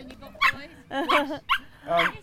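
A dog lets out a quick run of high, whiny yips and whimpers, about four short bursts in just over two seconds, with no one talking over it.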